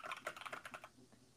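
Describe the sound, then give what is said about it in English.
Rapid, irregular computer keyboard clicks clatter for about a second, fairly crisp, then trail off into quiet. “I can hear your keyboard, my dude.”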